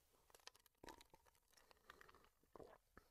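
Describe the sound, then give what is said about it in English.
A quiet sip from a drink: soft slurping and wet mouth clicks, a brief swallow, and faint rustling, with no talking. “I'm going to take a sip and then I'm going to say something.”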